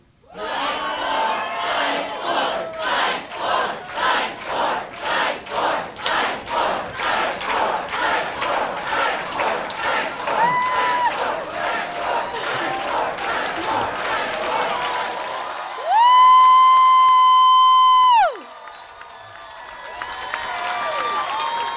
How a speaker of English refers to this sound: we need to give the Peacock Network a little idea of how much y'all want. It's like, so perhaps maybe if I were to videotape y'all saying, chanting psych four, and...